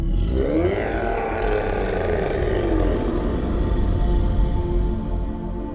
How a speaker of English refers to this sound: Then he reached out his hand again to place his Claymer sticker on the Stanley Cup. And this time, the grunt turned into a low, deep growl.